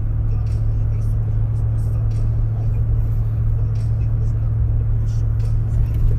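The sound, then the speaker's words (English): A steady, loud low rumble of a car driving through traffic, heard from inside the vehicle, with constant road and engine drone throughout and only faint, indistinct murmuring underneath. “I'm trying to talk while I'm trying to navigate through traffic, you know what I'm saying?”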